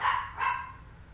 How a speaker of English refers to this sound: And my dog is barking. I don't know why. He's kind of distracting me, but